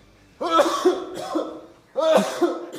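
Two loud bouts of heavy, rasping coughing, each a run of harsh hacking coughs, recorded close up with a short pause between them and no talking.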